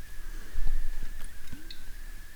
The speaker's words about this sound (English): Okay, let's take a sip of our drinks.